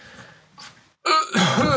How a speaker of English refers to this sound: No, that was a wet cough. I don't have coronavirus. What I found is that I'm just poor at consuming liquids. I too eagerly consume liquids. Right. So then it goes down the wrong pipe and I go, but it's not the dry corona cough.